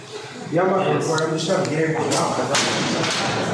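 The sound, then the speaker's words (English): Two sharp, loud slaps crack out in quick succession in a reverberant, echoey locker room, following a stretch of excited voices that carry on underneath. “Ooh, put the sound on. I want to hear the slap.”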